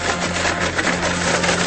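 A blender runs steadily for under two seconds, a loud, even whirring roar over a low motor hum, with no voices.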